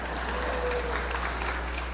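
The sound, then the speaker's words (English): A steady burst of applause, many hands clapping in a dense, crackling wash that holds at an even loudness for about two seconds, with no voices. “I should get a round of applause for that.”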